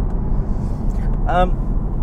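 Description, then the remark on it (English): A car engine hums and rumbles at about 3,800 RPM on a backcountry road, a steady, continuous low drone, with a brief higher-pitched tonal chirp near the end. “Oh, I love the sound of that car. What are we on? 3,800 RPM.”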